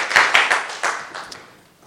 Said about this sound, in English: Clap your hands together for the Lord, and you may be seated.